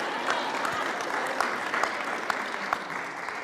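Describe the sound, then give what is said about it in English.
A crowd applauds steadily, a dense wash of many hands clapping at an even, moderate volume, with a few sharper claps popping out now and then and no one speaking. “You can clap on that.”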